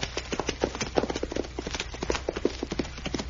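Hooves of a ridden horse clatter along a trail in a quick, steady clip-clop rhythm as a rider comes back this way, moderately loud, with no one speaking.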